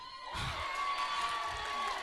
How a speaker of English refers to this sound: Great, because I wrote hold for applause there, so I'm glad you went with it.